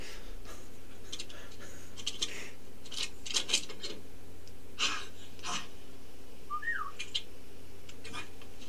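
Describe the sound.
A person's trademark sound: a short, rising whistle chirps out among a scattering of sharp, dry clicks that come irregularly throughout, moderately loud, with no one speaking.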